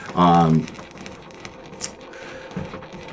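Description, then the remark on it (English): A voice imitates claws skittering on tile: a short voiced squeal, then a quick run of scratchy, clicking taps with one sharp hiss, fairly quiet and unsteady in rhythm. It is vocal foley for a mass of clawed hands writhing in a hole under the floor. “It's that constant, like, nail-on-tile sound of a million hands writhing under the floor.”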